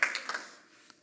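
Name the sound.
a few claps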